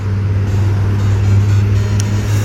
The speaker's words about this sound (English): Big noisy truck going past. What a rubbish truck.